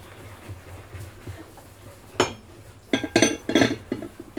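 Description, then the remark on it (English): Dishes clink and clatter into a crowded drying rack: one sharp knock after a quiet stretch, then a quick burst of several ringing clanks and a few softer taps, with no voices. “It's a crowded rack.”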